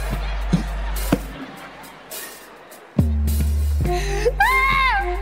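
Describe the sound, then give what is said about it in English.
An audience, called on to make some noise, cheers and hollers in a steady wash of noise, with sharp claps and whoops cutting through and a rising, wavering whistle near the end. “Fellas, make some noise if you out here with your girl.”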